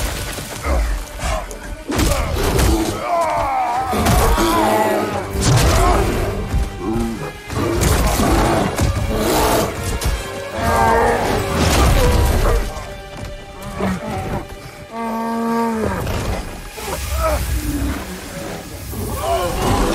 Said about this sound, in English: When their bear roared, you know, you're getting, and I learned this from working on Garm, what really works in this engine is to, with a giant roar, you create the fiction that the roar, you know, propagated throughout the world so intensely.